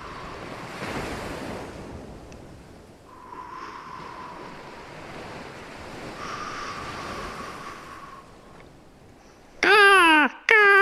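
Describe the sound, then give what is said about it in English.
A voice imitates soothing ocean waves with three slow, breathy whooshing swells that rise and fall, ending with a sudden burst of loud vocal noise. “I can help them fall asleep with soothing ocean sounds.”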